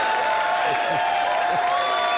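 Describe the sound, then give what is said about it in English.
An audience claps in a dense, steady wash of applause that holds at an even level throughout, with faint crowd murmur mixed underneath. “Oh, wow. Look at all this clapping.”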